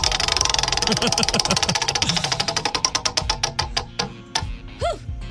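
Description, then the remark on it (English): A prize wheel is spun in a radio contest to pick the day's game, with a rapid, loud ratcheting of clicks that gradually slow and spread apart as it winds down, while voices murmur faintly underneath. “do you want to spin the wheel and see what game you're going to play today?”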